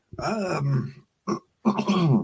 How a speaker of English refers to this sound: sorry, still getting over that coughing fit.